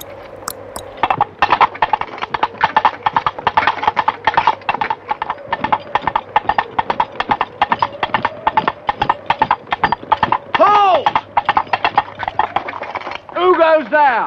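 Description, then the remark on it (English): Two halves of a coconut are knocked together by one of King Arthur's followers in a quick, steady clip-clop that imitates horse hooves trotting, prominent for the whole stretch, with brief vocal sounds rising over it near the end. “He had one of his few followers make clip-clop sounds of horse hooves, but they were with two halves of a coconut being put together.”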